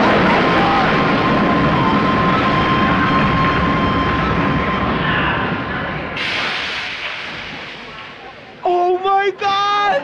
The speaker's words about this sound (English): Hey. Train coming, man. Oh, my God, that lady just... Hey, get out of the... There's a train coming. Get out of the track.